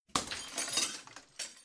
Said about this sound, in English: As Reggie is relaxing with some champagne, a green arrow shatters the glass, and Oliver makes his entrance from the rafters.